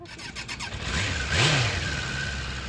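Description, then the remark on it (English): Mike's motorcycle engine idles, then revs up sharply in a single throttle blip before settling back to a steady rumble; no voices are heard. “Mike's motorcycle's gorgeous.”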